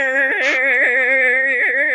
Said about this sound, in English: Okay, it's going. And that's how my car sounds. That's the sound of it going? That's how my car sounds. That's the sound of it working. Yeah, it's really loud.